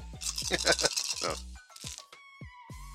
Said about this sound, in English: I'm just going to roll some dice and see how many hits he manages to succeed.